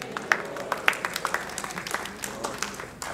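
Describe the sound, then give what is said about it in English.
An audience gives a praise clap, clapping together in a dense, steady burst of applause, many hands overlapping with a few sharper claps standing out, sustained for several seconds with no one speaking. “Yeah, we could all give Him a big hand clap for that. A praise clap right now.”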